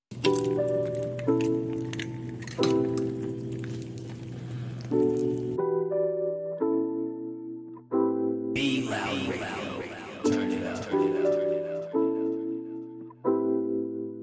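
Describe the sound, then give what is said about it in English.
A hissing, crackling sizzle like food frying in a pan, coming in bursts over a bright tune of sustained, stepping musical notes; the sizzle swells loudly near the middle, then the melody carries on. “Cue the sizzling pan.”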